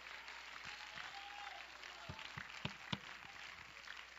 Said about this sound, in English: If you're thankful for it, you ought to clap your hands and praise the Lord even now.